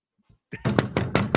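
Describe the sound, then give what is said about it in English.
A quick run of several loud knocks, evenly spaced, like someone rapping firmly on a door, preceded by a brief faint sound. “Knock before you come in, please.”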